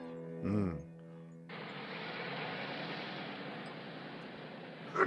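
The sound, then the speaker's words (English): A single short, voiced sneeze bursts out near the start, followed by a steady, broad rushing hiss that continues evenly to the end. “Bless you.”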